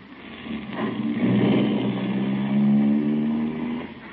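A car engine drones steadily as the vehicle drives, its low hum climbing slightly in pitch as it speeds up, continuous for the whole stretch with no voices.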